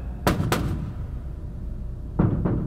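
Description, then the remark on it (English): A door that leads out back being opened, with two pairs of heavy clunks and thuds separated by a pause of low rumbling background noise, and no voices. “Oh, and I think this is the door that led out back.”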